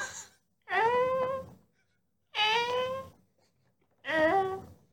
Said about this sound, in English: I heard him humming. He went... I recorded it.